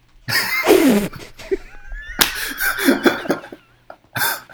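Several sharp, loud slaps from a man land on a person at irregular intervals, each a brief smacking burst, with gasping, laughing vocal noises between them and no clear speech.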